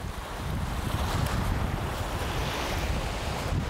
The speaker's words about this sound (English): The beach is covered in volcanic ashes, crushed by sea waves. The black sand is the tiny fragments of lava.